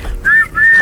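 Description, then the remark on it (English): Two short, shrill whistle blasts in quick succession, each holding a steady high pitch, loud with a brief gap between them and no talking. “Blow the whistle.”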